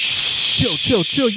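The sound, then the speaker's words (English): A voice imitates a battle rap host hushing the crowd with a long, loud, steady "shh" that runs the whole clip, with some brief voiced speech joining in over its second half. “7 minutes is of the host being like, shh.”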